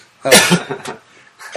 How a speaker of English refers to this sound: Is that your wife coughing? It's a dog.